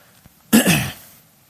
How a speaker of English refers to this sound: I tried to mute it before I coughed. I muted it after I coughed. This is bothering me.